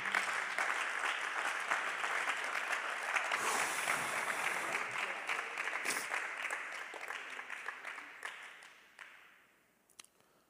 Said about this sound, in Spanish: Aplaude. Por favor.